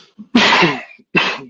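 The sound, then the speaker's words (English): A loud sneeze: a quick catch of breath, then a forceful burst, followed moments later by a second, shorter sneeze. No talking. “Bless you.”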